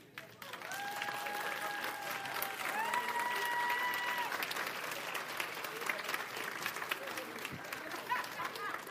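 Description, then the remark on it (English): A church audience stands and claps steadily for the whole nine seconds, a loud, dense wash of applause, with a couple of sustained tones ringing above it in the first half. “Now, try this. Stand up and clap.”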